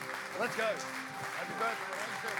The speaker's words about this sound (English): If we're going to clap, if we're going to applaud, let's give it up for Jesus, because he's all the time worthy, all the time worthy.